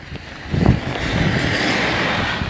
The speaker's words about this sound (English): Look, can you hear the water? That's the water. That's the water running down the side of the road.